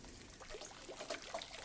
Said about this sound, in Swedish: nu häller jag av pastan och då var det viktigt att jag tar vara på en del av pastavattnet